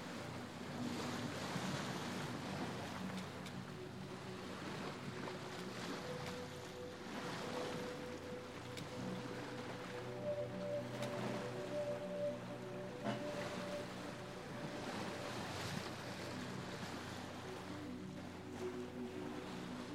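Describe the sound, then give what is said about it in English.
Cold sea water washes and splashes against a boat under a cloudless sky in steady surges every few seconds, with a constant low hum and some wind beneath the broad rush of waves. “Occasionally, cold water from the sea gently splashes your face and bare arms.”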